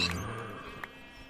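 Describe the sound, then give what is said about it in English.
A short, high-pitched video game pig squeal as the pig dies, sliding downward and fading, followed by a brief sharp click, moderately loud. “Well, the pig perishes now.”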